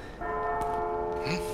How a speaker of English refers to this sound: And you're able to get to your horses, as you do hear kind of bells starting to chime as the guards start to get awaken